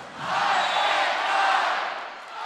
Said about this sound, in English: A big crowd as expected here at Huff Hall.